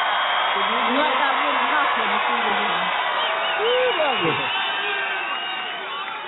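A large crowd in Texas cheers in a steady, dense roar that holds loud for several seconds, with a few high rising whoops and whistles cutting through before it eases slightly at the end.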